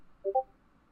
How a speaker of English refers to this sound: What is happening? Someone's getting blown up with fucking Discord notifications.